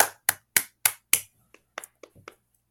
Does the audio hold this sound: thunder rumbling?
no